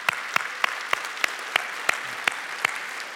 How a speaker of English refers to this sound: Can we clap for that for a moment, please?